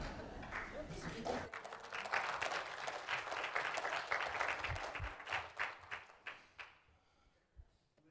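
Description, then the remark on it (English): A crowd at a service claps and cheers for several seconds, a dense patter of applause with scattered voices mixed in, thinning out toward the end with a few last claps. “Are those the lamest cheers you have ever heard?”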